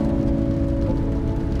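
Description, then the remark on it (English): A steady, continuous wash of rainstorm noise outside fills the whole stretch evenly, with a low droning hum running underneath and no voices. “From this fresh perspective, the storm outside doesn't affect you at all. You feel no rain.”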